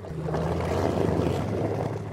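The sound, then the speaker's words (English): A Zodiac rubber dinghy's outboard engine drones steadily with a low hum, mixed with churning, scraping water noise as the hull rams through incredibly thick sea ice full of big, heavy ice chunks in Antarctica, heading for the Ukrainian research base Vernadsky. No one speaks. “We're having to ram our way through incredibly thick sea ice in what's called a Zodiac. It's a glorified rubber dinghy.”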